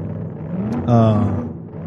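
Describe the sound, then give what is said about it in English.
A car engine revs up sharply during a car chase through Eden Park, holding a loud, rising whine over a low rumble, then settles back toward a steadier drone. “old George is in the car behind them, and there's a chase through Eden Park”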